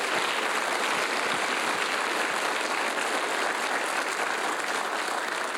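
Sustained audience applause, a dense, steady wash of many hands clapping at an even loudness for several seconds, with no voices standing out.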